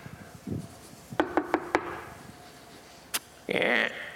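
Four quick, evenly spaced knocks rap, as if on a wooden door, followed by a single sharp click and a brief scraping rub. No one speaks.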